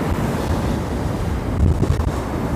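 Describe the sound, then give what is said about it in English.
Steady roar of ocean surf washing onto a beach in the rain, with gusty wind buffeting the microphone and low rumbling swells; no voices, just continuous, fairly loud wave noise. “A little shot of the beach, or the ocean rather.”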